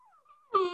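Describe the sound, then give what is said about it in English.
A dog gives a thin, high whine that breaks into a single short, loud bark, with no voices around it. “I'm glad the dog chimed in.”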